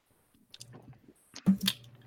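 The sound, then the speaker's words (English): A sip of bourbon: soft wet mouth noises and lip smacks, then a louder slurping gulp near the end, with no talking. “I had a sip of Kentucky's finest bourbon.”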